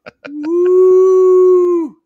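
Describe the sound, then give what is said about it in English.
A single long dog howl, loud, holding a steady pitch for nearly two seconds before dropping off, preceded by a couple of faint clicks. “Yeah, dog.”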